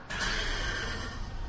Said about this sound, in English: The horse is like, nah, get me out of here.